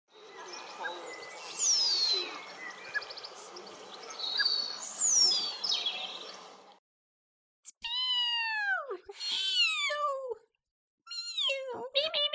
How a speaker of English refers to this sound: There's your meep meeps. It's a sandpiper.